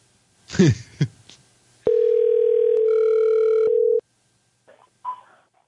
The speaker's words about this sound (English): I wasn't 100% convinced that was real. Thought he was doing a live voicemail message. Yeah. A beep.